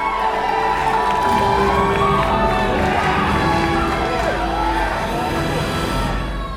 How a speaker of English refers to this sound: People were yelling, people were crying, people were laughing. And it wasn't the kids in the theater freaking out.